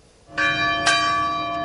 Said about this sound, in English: As the church bells tolled in Uvalde, President Biden marked the day, calling on Congress to pass stricter gun laws.